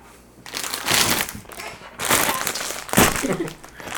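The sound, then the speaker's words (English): Loud, rustling crinkles of a plastic bag or wrapper come in three broad bursts, bright and scratchy, with a short pause between each handling. “So apologies, everyone, for lots of crinkling link. Noises.”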